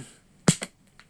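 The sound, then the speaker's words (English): A sharp hand clap followed quickly by a second slap, a high five imitating the Abed and Troy clap from Community, then a faint softer tap; brief, punchy impacts with quiet between them. “Did the Abed and Troy clap. High five.”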